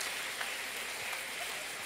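An audience applauds with dense, steady clapping that blends into a continuous crackling wash, holding an even level for the full two seconds with no voices.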